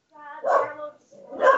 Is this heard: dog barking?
yes